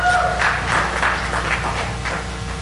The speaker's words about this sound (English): Hey, man, did you enjoy the marriage talk at the beginning of last week? Did you like that? Nobody did. Clap if you enjoyed last week.